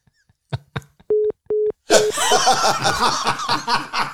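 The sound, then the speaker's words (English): A couple of short, steady telephone beeps sound in a pulsed on-off pattern, then a loud burst of laughter and crowd noise takes over. “oh, the phone's working out there.”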